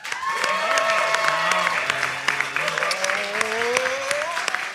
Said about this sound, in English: I would like you to applaud now. Let's hear that.